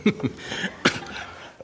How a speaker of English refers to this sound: Excuse me, I have had this leprosy where you cough for the next six decades, and I'm trying to get over it, but if I cough in your ear, I apologize.